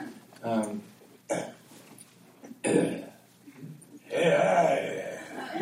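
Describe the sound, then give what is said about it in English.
Someone clears their throat several times before singing, four gruff, rasping bursts separated by short pauses, the last one longer and more drawn out than the rest. “Sorry, I got to clear my throat before I sing.”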